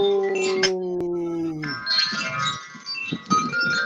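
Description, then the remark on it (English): A wind chime tinkles with overlapping bright, ringing metallic tones that shimmer on and off. At the start a steady low droning tone sounds beneath them, and faint talking comes and goes. “I think we got a wind chime behind you.”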